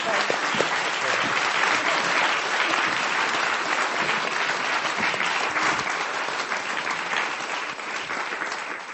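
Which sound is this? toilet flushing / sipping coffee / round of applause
round of applause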